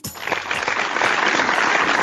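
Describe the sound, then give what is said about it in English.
A crowd breaks into applause as the show Done Being Single returns from a break, dense clapping that starts abruptly and swells to a steady, loud roar of hands with no voices over it. “That's nice to have some applause when you're in bed, isn't it?”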